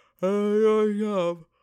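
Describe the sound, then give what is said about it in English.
A single drawn-out, voiced yawn, fairly loud, holding a steady tone for just over a second before trailing off, with no talking around it. “Oh my god, I'm yawning, but it's okay.”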